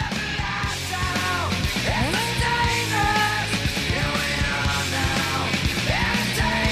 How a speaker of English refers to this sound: When they start screaming, they all sound the same. All right, they're the pioneers of grunge music out of Seattle, Washington.